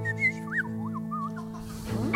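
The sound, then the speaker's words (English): An odd songbird call in an aviary: sliding, warbling whistled notes rising and falling over a steady low droning hum, ending in a brief burst of rustling noise. “What the fuck is that bird?”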